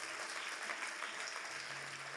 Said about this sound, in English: If you clap, I say, Beza Church, if you clap, it's to God, and give it your highest clap.